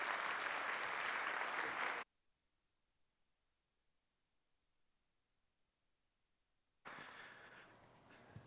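An audience at a morning church gathering claps for a guest preacher in a dense, steady burst for about two seconds, then silence falls before a second round of applause starts up and gradually thins out.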